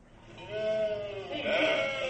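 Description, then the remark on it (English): Voices imitate sheep during a nativity play rehearsal, letting out a wavering, drawn-out bleat that swells louder midway and holds for a couple of seconds, clear with no talking over it. “How about some sheep?”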